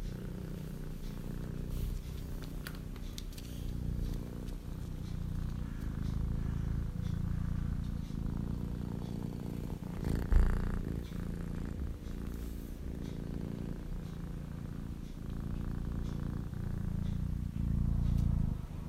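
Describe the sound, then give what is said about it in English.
A cat named Maya purrs steadily, a low continuous rumble with a gentle in-and-out rhythm lasting the whole time, with no talking over it. “But getting back to Maya, I'd like to share with you her purr.”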